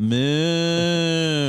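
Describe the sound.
A person imitates a cow with one long, loud, steady low moo that holds a single droning pitch for over a second, with no other talking around it.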